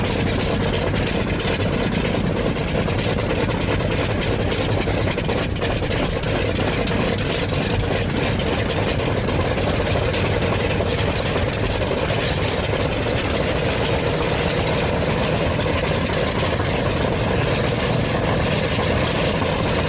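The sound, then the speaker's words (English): A loud, steady aircraft engine idles at an aircraft demonstration in the Illawarra, a continuous low rumble with a broad roaring hiss that holds level without pause for the whole stretch, and no voices. “it's been a pleasure watching the aircraft demonstrate their stuff.”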